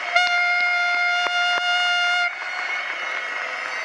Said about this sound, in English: And so I just want to give God praise and just ring in this new year. So let's do that together. Clap, use your horn blowers. Let's do it all together and just praise God.